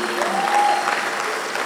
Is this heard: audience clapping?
yes